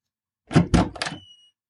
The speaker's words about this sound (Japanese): あれ？ドアが開いています。